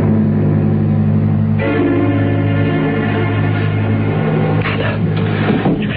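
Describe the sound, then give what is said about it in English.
A loud train whistle, blown by the engineer of a train bound for New York, sounds in one long, steady chord of layered tones, its pitch shifting partway through before it keeps sounding to the end, with no voices. “Blow your train whistle for New York.”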